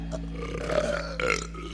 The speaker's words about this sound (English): or we could have a burping competition.